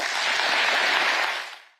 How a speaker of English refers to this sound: That was Keir Starmer getting a very big round of applause for deciding 30,000 dead Palestinians was probably enough.